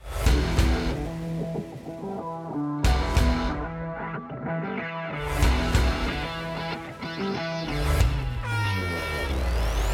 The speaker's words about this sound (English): You hear the air horn sounding, marking the final 2 minutes of the open red flag conditions.